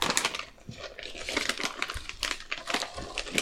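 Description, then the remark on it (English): Continuous crinkling of a plastic snack bag of peanut butter popcorn and chocolate-covered pretzels, with sharp irregular rustles and crackles as it is pulled and torn open by greasy hands. No voices are heard. “My hands are greasy. I can't open it. I got it.”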